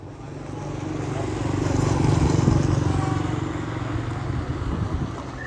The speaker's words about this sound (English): At the Namanga border crossing between Kenya and Tanzania, traders seek shade from the searing sun. Trucks and motorbikes pound the road between the checkpoints.